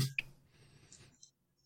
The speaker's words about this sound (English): So, we roll our big fistful of dice.